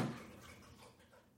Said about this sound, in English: She's not snoring. Yeah, she's thirsty. I want to see how long she'll drink water.